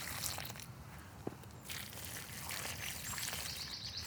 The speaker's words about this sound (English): In goes the limey water. So I walk up and down the row with my watering can.